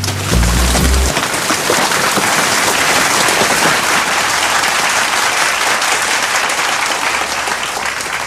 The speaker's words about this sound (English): Well, we got live rain for you here in the studio. Yeah. You know, we try to spare no expense if we can. It's a nice little drizzle.